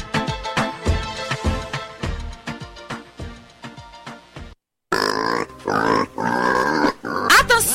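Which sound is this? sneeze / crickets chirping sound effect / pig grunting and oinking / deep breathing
pig grunting and oinking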